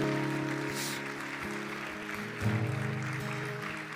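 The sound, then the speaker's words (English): An audience claps to Jesus for everyone who received him that day, steadily and continuously under sustained, held keyboard chords, the applause forming a dense crackling wash while the music swells slightly toward the end. “Could we clap our hands to Jesus for everybody that received him today?”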